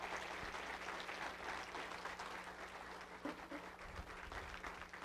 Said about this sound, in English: Now let's stand up. Come on, one more round of applause.